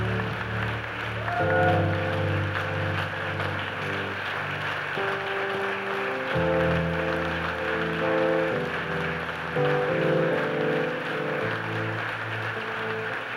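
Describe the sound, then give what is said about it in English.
An audience claps for their pastor in a dense, steady wash of applause that runs the whole time, while sustained keyboard chords hold and shift beneath it. “And I tell you what, let's give our pastor, he's the father of us all. A clap off the front.”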